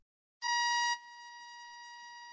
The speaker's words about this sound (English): Ooh, I'm going to take advantage of that sound cue to let the dog in. I didn't know your dog knows how to ring the bell.